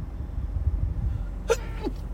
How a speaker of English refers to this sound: Hold on, I might have to sneeze.